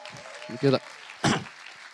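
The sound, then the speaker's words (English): An audience claps in a steady, noisy patter for a woman called forward from the back, while voices call out over it in short bursts, with a couple of louder swells. “Let's give this lady a round of applause.”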